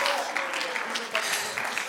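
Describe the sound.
An audience claps hands unto the Lord during worship, a dense wash of many hands sounding loud, with scattered voices mixed into the noise.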